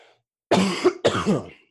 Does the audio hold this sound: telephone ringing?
no